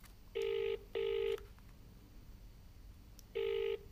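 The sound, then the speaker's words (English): An outgoing call's ringing tone from a blocked number: a double burring beep, a pause, then another double ring starting, steady and clear over faint background hiss, with no one talking. “Nobody picks up a blocked number, do they?”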